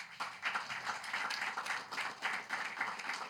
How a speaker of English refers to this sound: It's a wonderful answer. Clap for her, please.